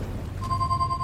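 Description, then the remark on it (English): A phone starts ringing partway through, a steady electronic tone sustained over a low background hum, fairly clear, with no voices; the signal comes from Faith's Pi phone in the game Leisure Suit Larry: Wet Dreams Dry Twice. “That's not the doorbell. The signal's coming from Faith's Pi phone.”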